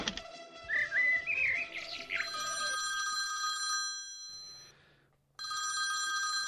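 A loud, bright telephone ring sounds for a couple of seconds, pauses briefly, then starts again, following a burst of high warbling chirps and clatter at the start.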